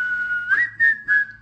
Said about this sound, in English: And then we had this sort of like whistling duet that was very off time and not very good. It was awesome.